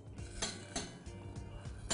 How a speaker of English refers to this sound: So I'm hearing that sizzle from my onions.